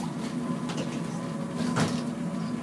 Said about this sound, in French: Attention, ferme les portes, les amis